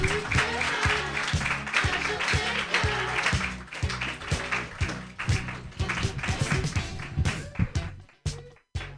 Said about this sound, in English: Clap more